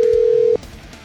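A telephone call being placed: a loud, steady electronic phone tone holds for about half a second, then cuts off abruptly, leaving only faint background noise.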